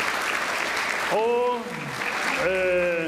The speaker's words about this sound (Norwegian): Denne dama her, hun satt i gang og klarte da med venner og andre å få finansiert oppbyggingen av Forum Kino. Igjen en klapp for det.